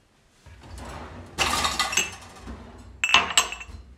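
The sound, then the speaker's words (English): Bright metallic clinks ring out in two clusters, fairly loud, over a continuous low bubbling rumble like water boiling on a stove; nobody speaks. “Just pretty much turning into ASMR, like clinks, water boiling.”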